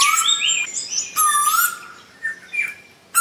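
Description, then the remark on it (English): An eastern koel calls loudly, a series of clear, whistled notes that rise and fall, repeating in bursts with short pauses between, alone without any talking. “And they don't have the eastern coal, which is my favourite bird in Australia, but a lot of people don't like the eastern coal because the eastern coal is the bird at night that goes off at 5 a.m. because it goes...”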